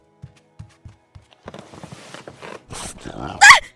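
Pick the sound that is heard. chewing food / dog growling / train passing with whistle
dog growling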